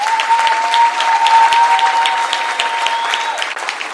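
A church audience claps hands for His presence in a dense, steady burst of applause that stays loud throughout, with a faint sustained tone running underneath; no one speaks.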